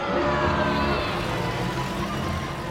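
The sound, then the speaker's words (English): A jeep engine revs steadily and loudly, its droning pitch creeping slightly upward over a dense rumbling roar, with no talking. “So you're in your Jeep.”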